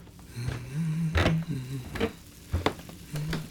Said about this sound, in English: Breakfast sounds.